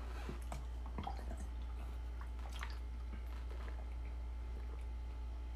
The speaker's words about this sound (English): Let me hit a swig of water.